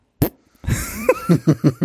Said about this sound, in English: It makes it so much funnier because he just like leans over and farts. He just clearly shits himself on the stage.